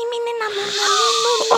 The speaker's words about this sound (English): Snoring. Oh, gosh, she's snoring.